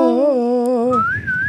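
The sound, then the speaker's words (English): A wavering, vibrato sung note, Fluttershy singing back as she follows the whistling, gives way to a clear, high whistled tone that glides slightly, loud, with no talking. “And Fluttershy's like following the whistling. And she's like singing back.”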